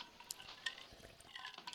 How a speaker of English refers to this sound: Oh, let me get a drink here.